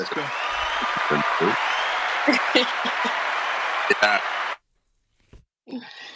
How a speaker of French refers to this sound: Tu vois, il parle pas, mais il envoie des petits applaudissements.